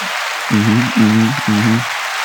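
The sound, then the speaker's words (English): A canned applause sound effect, triggered by clicking a soundboard button, plays for a couple of seconds: a steady wash of clapping with three short, buzzy tonal blasts sounding over it in quick succession. “I'm getting tired of clicking the applause button.”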